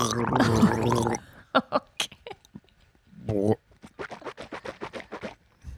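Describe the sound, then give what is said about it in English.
Wet mouth sounds of someone swishing a drink of water around in the mouth, starting with a gurgling burst, then scattered clicks and a run of quick, rhythmic sloshing pulses. “I just pictured you swishing around all your plaque and then spitting it out or swallowing it.”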